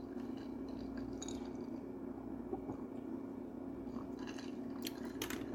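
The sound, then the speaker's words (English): Crunching of ice being chewed by a person, a few sharp brittle crunches scattered over several seconds, with louder bites near the end, set against a steady low hum and no talking. “Okay, you can hear me drink, but you can also see me drink right now. And chew ice.”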